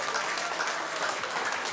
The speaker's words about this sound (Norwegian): Vi har jo våre kongolesiske venner. Se hvor fine de er. Vi må gi dem en skikkelig klapp.